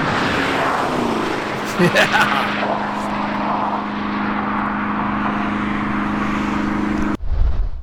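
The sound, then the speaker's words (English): A Camaro ZL1 1LE sports car engine drones loudly and steadily as it is driven in Germany, layered over rushing road and wind noise, before cutting off abruptly near the end. “They say the spy camera guys were out in full force in Germany and caught the ZL1 1LE in action.”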